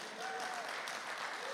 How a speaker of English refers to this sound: If you're happy, you will clap your hands for the Lord.